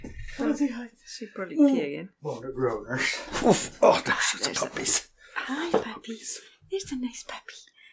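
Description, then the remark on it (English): Puppies about seven or eight weeks old, one named Venus, give a few thin, wavering whimpers, mixed with soft breathy voices and whispered talk that carry on through the rest of the moment. “We got puppies and we got PBs.”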